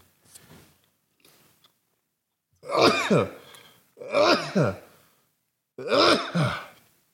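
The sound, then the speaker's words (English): Three loud, drawn-out sneezes in a row, each a voiced two-part burst with a strong breathy rush, evenly spaced after a few faint sounds at the start. “Fuck, COVID makes you sneeze now?”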